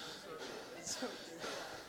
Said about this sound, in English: Y'all know why I'm breathing like this? Too much Chick-fil-A, not enough keto.